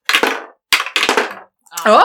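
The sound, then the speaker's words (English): Dice are rolled three times to set the speaking order, coming up 20, 12 and 1, clattering and tumbling across a hard surface in three quick, rattling bursts, each fading out, followed by a brief voiced exclamation. “Let's raise some dice for one of our last conversations today.”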